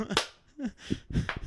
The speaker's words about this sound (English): Oh, no, I clapped so loud.